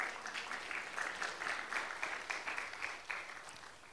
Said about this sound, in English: Can we give a clap offering unto the Lord?